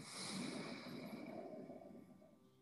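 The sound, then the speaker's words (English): A steady nasal inhale through the right nostril during a breathing exercise, airy and slightly snorting, lasting a couple of seconds and gradually tapering off, with no talking. “I'm breathing in right.”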